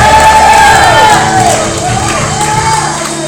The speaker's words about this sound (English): I said, that's enough for you to shout till Jesus comes. And give me the time to all the crowds. Shout it out louder.